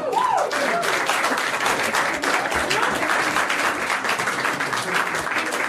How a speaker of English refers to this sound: Can we just have a round of applause